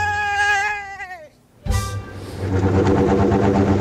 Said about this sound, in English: Hear that? Those are rumble strips. Rumble strips are grooves in the pavement that warn drivers when they drift from their travel lane. They can reduce severe lane departure crashes by up to 50%.